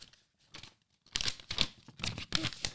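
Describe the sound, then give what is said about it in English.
Two pieces of folded paper are flapped by a boy, crinkling in a run of quick, crisp rustling bursts, starting softly and growing louder and busier, with no voices. “made something out of paper. It's folded up, and I think there's a message inside, and he's flapping it.”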